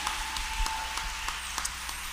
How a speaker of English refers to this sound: That was good, yes? You received that blessing, mothers? Good. Will you clap your hands one more time